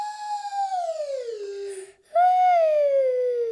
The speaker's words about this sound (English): You play Singing Slide by making a slidey sound with your slidey voice, like I'm going to make with my slidey whistle. Here's an example.